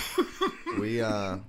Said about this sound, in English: You ever cough?